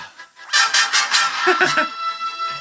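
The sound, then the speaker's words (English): A phone alarm ringtone plays a rapid run of loud, bright, honking bursts with a steady high tone beneath, the pulses crowding together before tapering off into quieter sound. “So now, this is my ringtone. It's my alarm clock.”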